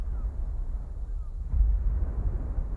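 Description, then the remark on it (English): Simulated ocean waves as they would sound on Mars, where the atmosphere is only 1% as dense as Earth's: a muffled, bass-heavy rumble with almost no hiss, swelling louder about halfway through as another surge rolls in. No one speaks. “All right, we're just hanging out, and then you can click the Mars version, because on Mars, what is it, The atmosphere is only 1% as dense as Earth, so you get this instead.”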